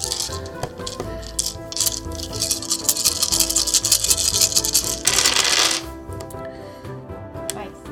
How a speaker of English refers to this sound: All right. I have a lot of dice to roll, and I'm going to roll them.